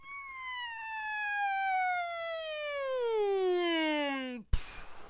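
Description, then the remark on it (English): A single voice imitates a siren, a sustained wail that slides steadily downward for over four seconds before cutting off abruptly, followed by a brief burst of noise. “That was a good siren.”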